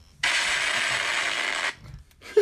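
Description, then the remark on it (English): A participant's quiz buzzer: a single harsh, hissy buzzer blares steadily for about a second and a half, then cuts off abruptly, followed by a brief quiet pause and a faint short tone at the end. “Danny's little buzzer is this.”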